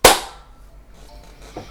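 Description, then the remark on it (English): A single sharp, loud hand clap done on a count of three that cracks out at once and fades quickly, followed by quiet with only faint background noise and no talking. “So if we do a clap then, after three.”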